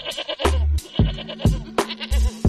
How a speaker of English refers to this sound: Man's a shepherd, can tell by the goats.